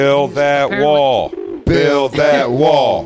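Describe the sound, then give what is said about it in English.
Rural pigeons coo loudly in a run of throaty, rolling phrases, pausing briefly midway before the warbling calls resume and carry on to the end. “Well, today the pigeons were here.”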